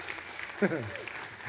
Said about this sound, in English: Some of you are like, I think I want to clap for that.